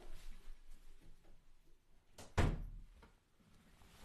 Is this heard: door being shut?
yes